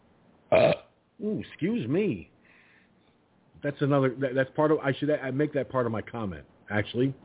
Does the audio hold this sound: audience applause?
no